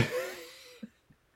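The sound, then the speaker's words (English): A long, breathy yawn that starts with a loud rush of air and trails off in a drawn-out, faintly voiced sigh, followed by two soft little mouth sounds. “Am I boring you? You're yawning.”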